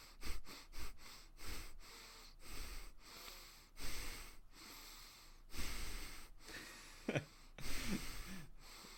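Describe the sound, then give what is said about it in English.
Noisy breathing through the nose, with quick snorting sniffs at the start and longer inhales and exhales after, some carrying a brief click like a small valve opening. No one speaks. “Like, I don't know if you can hear it, but I'll try breathing through my nose real quick.”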